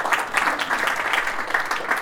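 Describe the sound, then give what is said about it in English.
A crowd applauds steadily, a dense wash of many hands clapping at once, fairly loud and sustained with no voices standing out. “A bit of a round of applause for these guys.”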